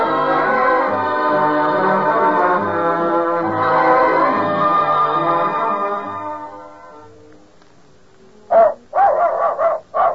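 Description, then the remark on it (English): A sustained musical chord fades away, and after a short pause a dog barks about four sharp, quick barks in a row, opening a radio commercial for Gaines dog food. “Happy, healthy dogs speak for Gaines, G-A-I-N-E-S, Gaines Complete Meal that nourishes every inch of your dog.”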